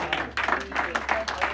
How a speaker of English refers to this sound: Give the Lord a hand clap as you sit down.